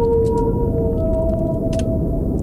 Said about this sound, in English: I mean, I don't know if it's as good as Whale Song. No, Whale Song's pretty sweet, man. I'll sleep to that all day long.